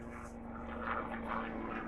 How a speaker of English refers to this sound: See, if I was Alex Jones, that military helicopter going overhead of us recording this podcast right now would be a good connection to draw.